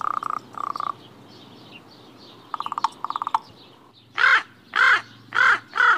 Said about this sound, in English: Here are some examples of raven speech as recorded by the Cornell Lab of Ornithology.